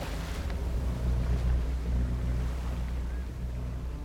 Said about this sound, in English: the oblivious fishermen start up their motor.